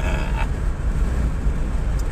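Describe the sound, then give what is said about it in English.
Steady low rumble of a car cruising on a highway, with constant road and engine drone and a faint rushing hiss throughout, no voices. “Alrighty, so what we're doing now is we're just driving down the highway.”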